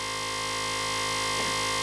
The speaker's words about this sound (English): There's the buzzer.